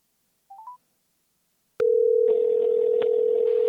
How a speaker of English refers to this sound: and and I'll get him on my cell phone